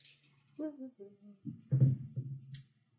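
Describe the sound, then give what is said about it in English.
Dice rattle and clatter across a tabletop in a short, bright burst, followed later by a single sharp click, while people talk over the sound. “Set those dice aside right now.”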